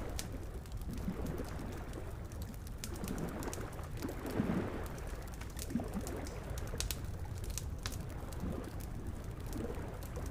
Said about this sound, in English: Then came some muffled waves and whispering wind.